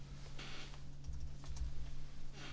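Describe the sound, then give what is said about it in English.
Soft, irregular clicking of someone typing on a computer keyboard over a steady low electrical hum with no voices. “They're typing.”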